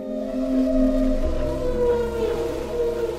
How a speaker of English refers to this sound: But Frank's gear kept picking up something else. These eerie, beautiful sounds. They weren't submarines. They were humpback whales.